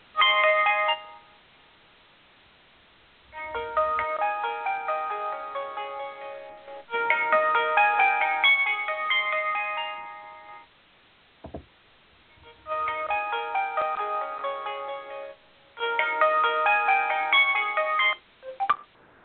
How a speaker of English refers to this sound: what was playing? What was that? I'm sorry, that was my cell phone. It went off. Oh, okay. Got to turn it off.